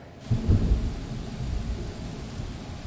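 A deep roll of thunder booms in loud, then rumbles on in a low, steady growl beneath a wash of steady rain on a dark, stormy morning, with no voices.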